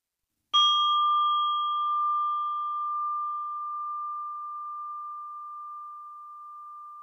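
A single meditation bell is struck once to begin a meditation practice, giving a clear ringing tone with a bright higher overtone that fades first while the main pitch sustains and slowly decays for several seconds. No voices.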